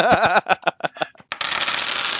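A few quick papery flicks and slaps give way to a steady riffling rush as someone rapidly thumbs through a stack of game cards, searching for a particular card, with no talking.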